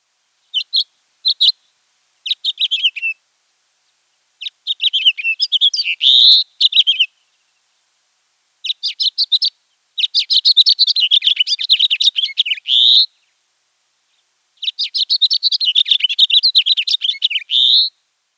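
A house finch sings several long, rambling warbled phrases, each tumbling through bright chirps and ending in a buzzy rising zree note, with short pauses between bursts; clear, no talking.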